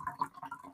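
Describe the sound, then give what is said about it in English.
A short, quiet pour of alcohol into a glass, with soft gurgling, bubbly splashes and a couple of faint drips, no voices. “I love when you just hear the pouring of the alcohol.”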